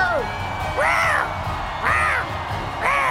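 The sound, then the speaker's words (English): Someone imitates the roar of Ember the Litleo, a lion cub Pokémon, during a role-played Pokémon battle: a series of short, squeaky, rising-and-falling yowls repeated about once a second, fairly loud over faint background noise. “Working on that roar. he's working on it.”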